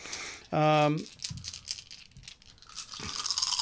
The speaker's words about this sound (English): Here comes a fucking fistful. Which six dice do I want to roll?